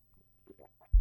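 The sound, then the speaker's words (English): A few quick, soft slurping sips of coffee, followed by a sudden heavy low thud at the end; no one talks. “Take a sip of coffee.”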